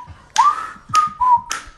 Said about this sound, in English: That was the worst whistle you've done all week. It's unbelievable. You're in the shower, you're whistling. You're walking around the house, you're whistling. You can't even do it for the pod.